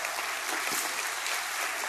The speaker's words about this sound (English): Come on. Let's give God a hand clap of praise if God gave you some money.